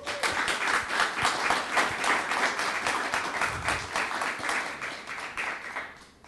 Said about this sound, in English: So since we had a couple of announcements tonight, typically we welcome our guest and we give them a rousing round of applause. So I'm going to pause now and we're going to do that.